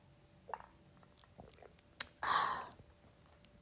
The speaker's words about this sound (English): Now, let's put our drinks up because I know damn well I'm about to take a sip, okay?